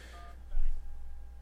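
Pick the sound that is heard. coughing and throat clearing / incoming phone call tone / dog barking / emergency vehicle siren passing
incoming phone call tone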